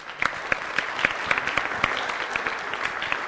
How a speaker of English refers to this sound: And so I want to give a great big round of applause for them.